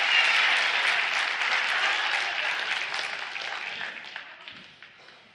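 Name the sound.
audience applauding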